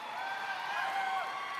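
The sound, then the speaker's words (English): A crowd cheers and applauds steadily for NASCAR driver Brad Keselowski at a SkillsUSA event, a dense wash of clapping and voices with a few higher whoops rising above it, sustained at an even loudness without letting up. “Wow, what a great crowd.”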